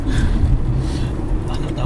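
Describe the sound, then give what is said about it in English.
A steady, loud low rumble of road and engine noise fills the cabin of a moving taxi, with faint muffled voices in the background. “So, on a scale of 1 to 5 nuclear missiles, how would you rate Donald Trump's performance for the Americans here in the car with us?”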